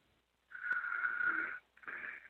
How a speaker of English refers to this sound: Sleep on hold. No, a heart attack sounds different. That's a man who's in a deep snore.